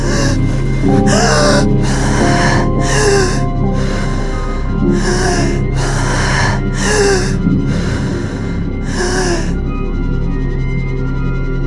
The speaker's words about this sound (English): Tearing myself from the earth, I fell gasping onto the ground.